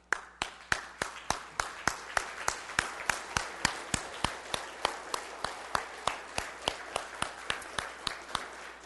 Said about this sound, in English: So let us close off by standing together and giving our God a clap offering for who he is and what he does. Let's stand.